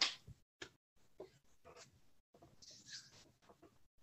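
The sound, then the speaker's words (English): Paper rustles and crinkles in a series of irregular, scratchy bursts with brief pauses between them, fairly quiet throughout, with faint low murmuring underneath. “Who's making that paper sound?”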